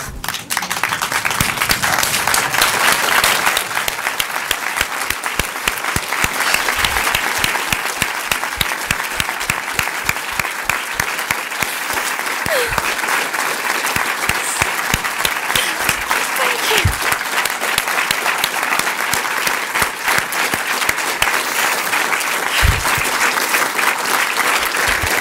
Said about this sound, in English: If you'll forgive me, it was an awful week, and Alan died, And I wonder if you'd all stand up and clap.